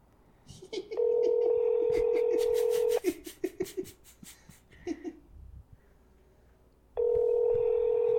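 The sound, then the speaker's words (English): Telephone call tones: a steady, buzzy two-second ring tone, a four-second pause filled with faint voices and rustling, then the same tone starting again. “Call her back.”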